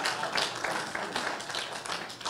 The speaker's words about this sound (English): Three claps.